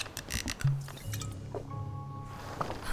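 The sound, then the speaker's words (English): Wet liquid sounds, with gurgling, squishy splashes and a rising tone like water being poured or gulped down, continuing for a few seconds with no talking. “Have some water.”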